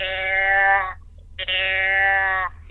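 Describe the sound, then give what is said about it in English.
Two drawn-out, nasal bleats imitating a doe deer, each about a second with a short pause between. Loud, steady in pitch, buzzy and rich in overtones, with no talking. The call is made at a buck that is sniffing the ground for a doe's scent. “He's trying to get the scent of a doe. And you bleat at him, and you go.”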